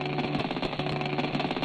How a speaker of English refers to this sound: This is the sound of debris formed by ice and dust in the wake of a speeding comet. In this recording, the debris is hitting an instrument on NASA's Stardust spacecraft. This instrument measures sound waves and electrical pulses from dust impact.